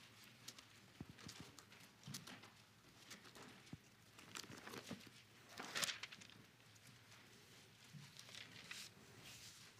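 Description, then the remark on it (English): Thin Bible pages rustle and flip, a soft run of crinkly swishes with one sharper, brighter turn midway, with no talking. “I like the sound of hearing those pages turn.”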